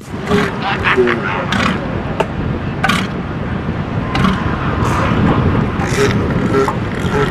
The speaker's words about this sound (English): Oh, oy. Sounds like a toilet. Yeah, so with the sound of the water and that kind of squeaky sound, I'll go for the seal. It's a seal.